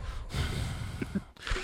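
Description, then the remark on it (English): A loud, exaggerated heavy breath drawn in and pushed out, broad and airy, with a second sharp gasping intake at the end. “Breathe again.”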